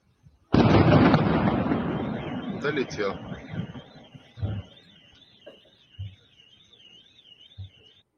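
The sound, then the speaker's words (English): A big distant explosion from an attack on a factory producing electronics and radio equipment in Bryansk, Russia, booms and rumbles away over a few seconds, followed by three fainter low thuds spaced apart, while a thin wavering high tone warbles steadily in the background. “You see the flash of the explosions.”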